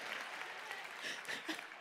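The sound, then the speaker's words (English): A crowd claps steadily for the speaker's brief singing, a dense, continuous patter of many hands, fairly loud throughout with small swells, and no voices clearly rising above it. “You don't need to applaud my weaknesses.”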